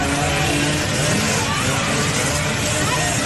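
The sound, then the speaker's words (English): Loud, continuous engine roar like motorcycles revving on a busy street, filling the whole stretch, with a faint murmur of crowd voices mixed underneath. “And as soon as the cops show up, they all start running each other over in motorcycles, pushing each other out the way.”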